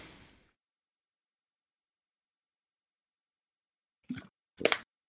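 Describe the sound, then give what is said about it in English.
Someone chugs water: two quick gulps, one right after the other, following a few seconds of near silence with a brief rustle at the very start. “Needed water. You ask me a question and then just chug a lug.”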